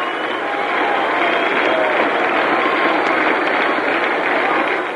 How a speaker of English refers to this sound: Now for the first time in the series, the crowd claps in unison. And right now it seems to be a predominantly Brown crowd. Listen to that.